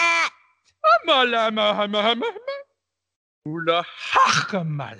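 A goat bleats twice up close, two long, wavering, nasal cries separated by a brief pause, the second rising higher and rougher than the first.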